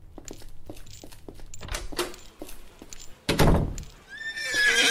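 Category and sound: animal, horse neighing and hooves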